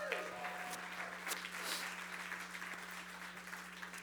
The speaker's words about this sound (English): Man, I'm serious. Give them one more applause.